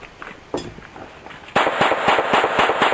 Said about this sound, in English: Sounds like a gun. You really hear the echoing. So, that was without a suppressor.